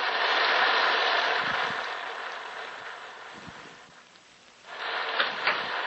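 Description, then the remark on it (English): A steady wash of heavy rain pours down, dense and hissing, easing slightly midway before surging loud again near the end, with a few faint low rumbles underneath. “There's the house. And the rain. Look at the rain.”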